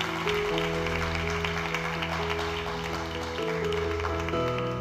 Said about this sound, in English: Let's also just give a round of applause for anyone here today that...